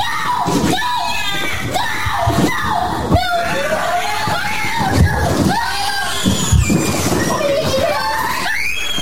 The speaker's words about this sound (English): I'm just loving all of the commotion. And I love seeing little children in distress, crying and screaming. Ugh, like a white noise machine for me. I'd like to go to sleep to that.